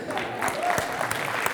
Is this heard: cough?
no